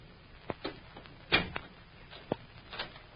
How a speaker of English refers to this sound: Hey, what do you mean by locking the door?